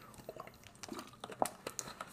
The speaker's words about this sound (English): I'm drinking this sparkling water. It's good. It's by Smart Water. It's delicious. Strawberry blood orange. It's delicious.